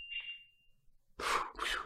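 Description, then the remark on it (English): A single high, steady electronic alarm tone rings for nearly a second and fades, followed by two loud, breathy bursts like gasps or heavy exhales. “We started talking about teasers and the alarm came.”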